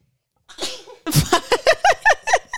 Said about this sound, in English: She's laughing because I just sneezed.